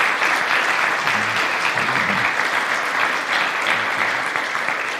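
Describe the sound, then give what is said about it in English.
A church audience claps steadily for guest speakers, the dense applause sustained and fairly loud for the whole stretch, with a faint murmur of voices underneath and no one speaking clearly. “So would you join me in giving them a round of applause?”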